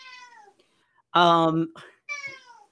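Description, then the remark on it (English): A visiting cat meows in a few drawn-out calls, a softer one first, then a loud, strained yowl, followed by another medium meow, with brief quiet gaps between. “Oh, we got your cat friend here visiting us.”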